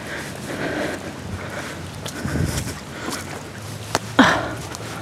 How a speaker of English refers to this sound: ASMR me stepping in a puddle again.